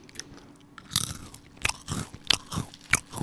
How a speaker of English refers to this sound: Oh, this is also an ASMR segment now. Mm-hmm. At 16:54. Gotta chew louder. I don't know how. I'm just so delicate and dainty, I just can't chew loud. Yeah, this is Westminster Baker's Co. Oyster crackers.